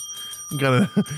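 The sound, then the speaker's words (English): A bell sound effect rings with a steady, bright tone that lingers through the whole moment, while a person starts talking over it partway through. “I got a mold turned LSD bell too.”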